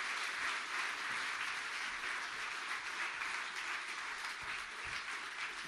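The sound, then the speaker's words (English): Sustained applause from a sizable crowd for the band, a dense wash of many hands clapping at steady volume throughout, with no voices rising above it. “Why don't you give these guys a round of applause?”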